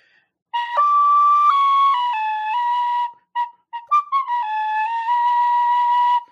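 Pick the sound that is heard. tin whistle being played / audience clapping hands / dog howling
tin whistle being played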